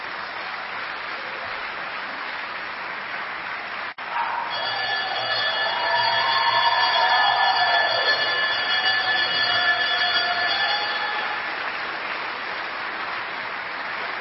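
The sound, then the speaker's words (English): A bell rung by men at a gathering rings steadily for about seven seconds, a bright sustained clang of several high metallic tones over a constant wash of crowd noise, then cuts off. “I see some of y'all out there like, man, these dudes ringing bells.”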